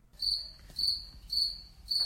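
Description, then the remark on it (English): A cricket in a garage chirps in a steady rhythm, four bright, high trills evenly spaced about half a second apart, clear over a faint low rumble, with no voices. “He was not too concerned that a cricket was in his garage”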